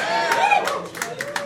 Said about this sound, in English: I feel like I saw nods before I heard claps. Are you guys having a good time is what I'm asking.